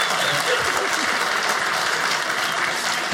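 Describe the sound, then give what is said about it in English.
A crowd claps steadily, a dense, sustained wash of many hands applauding at a fairly loud level for the whole stretch, with no pauses or distinct individual claps standing out. “I don't think a Venn diagram has ever gotten applause before.”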